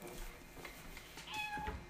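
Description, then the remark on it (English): A cat meows, with a short run of high, tonal cries in the second half over a faint background hum. “Where did we get a cat?”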